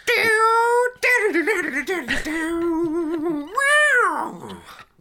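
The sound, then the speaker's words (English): A person imitates a cat meowing as a playful overall score for the Forest Patrol, with a string of drawn-out, wavering mews and a final rising-and-falling meow, loud, with no other sounds. “It's meow.”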